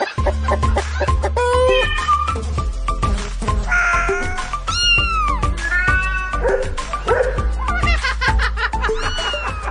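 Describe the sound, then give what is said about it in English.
Several cats meow repeatedly and loudly, their rising and falling cries overlapping over a steady low background rumble or music bed. “Today, the internet's favourite animals. Sorry, dogs. Yes, it's cats.”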